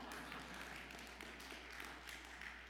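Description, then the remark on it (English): An audience at a sermon claps steadily after the point that Jesus showed us how to respect women, a dense, continuous patter of many hands that holds an even, fairly soft level for the whole stretch, with no talking over it. “Come on, you can keep on clapping.”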